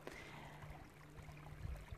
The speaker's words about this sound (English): And so we can connect with the elements like today I'm doing, sitting by the creek. You might be able to hear in the background the sound of the creek flowing.